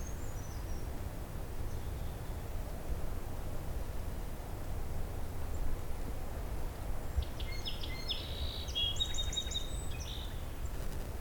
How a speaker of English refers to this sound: Song sparrow's back again.